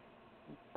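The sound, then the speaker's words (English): A single sneeze: a soft intake of breath, then a sudden loud, harsh burst right at the very end, cut off abruptly. Quiet background hiss before it, no talking. “Sorry about that. Bless you. Bless you.”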